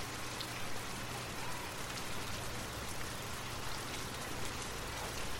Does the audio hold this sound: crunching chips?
no